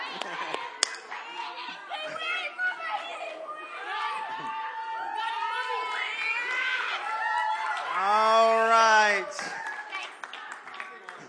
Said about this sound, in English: You guys are doing good. Come on, boys. Cheer them on.